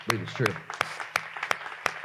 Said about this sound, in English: How many of you guys believe that's true? Okay, can we clap?